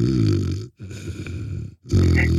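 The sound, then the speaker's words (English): A person imitates an old German Shepherd dog snoring: three rough, rumbling snore-like grunts in a row, fairly loud, separated by brief silent breaks. “And she would be asleep because she was old and decrepit, you know, she would snore.”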